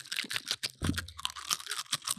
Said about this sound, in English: I'm going to see if I can eat a Funyun with my beaver teeth. Let's see how this goes.